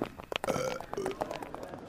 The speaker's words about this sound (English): All right, let me just get my pre-departure belch finished. I'm good.